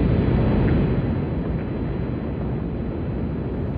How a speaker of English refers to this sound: All engine running. Liftoff. We have a liftoff. Liftoff on Apollo 11.